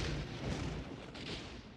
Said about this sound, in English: Well, what did you think it was? Thunder.